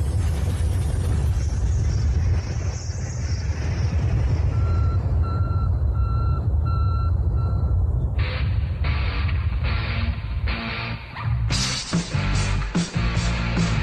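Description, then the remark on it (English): A steady series of electronic beeps repeats over a heavy, low engine rumble, the pulses turning louder, sharper and more insistent toward the end. No one speaks. “Every time I hear that, I think it's, I hear the beeping noise”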